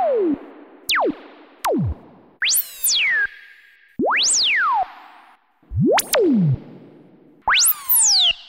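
Analog synth force-field effects made with a Moog Concertmate MG1 synth: about eight loud, resonant tones that swoop sharply down or up in pitch, one after another with brief gaps, some sweeps bright with buzzy harmonics, no voices.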